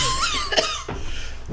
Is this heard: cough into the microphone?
yes